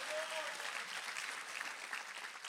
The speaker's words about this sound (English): Come on, clap if you're excited.